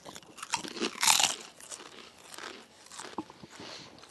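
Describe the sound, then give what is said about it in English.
Loud, crisp crunching of thick-cut kettle-style malt vinegar potato chips: a sharp bite near the start followed by several irregular, crackly chews with bright high-pitched snaps, no talking. “They're crisp. They're thicker. The regular Utz ones are not their kettle style, so they're not as thick cut.”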